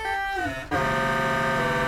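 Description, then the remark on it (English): Metallic, bell-like synthesizer tones from ring modulation of two oscillators, with dense inharmonic overtones. A gliding, shifting tone gives way at a sharp break to a steady, buzzing ring-modulated drone that holds loudly to the end. “You hear all these kind of sounds? This is real good for ring mod here.”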